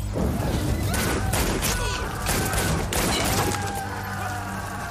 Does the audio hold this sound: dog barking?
no